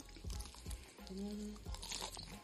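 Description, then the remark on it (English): Crisp crunching from bites into fried chicken, several loud crackly bursts with chewing between them and a brief low hum partway through. “That's the sound. That crunch.”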